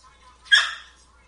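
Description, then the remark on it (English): A dog, scared and on edge during a tornado, lets out one short, sharp bark with a yelping, whimpery edge, clear over quiet background murmur. “The dogs are a little scared on edge of the tornado.”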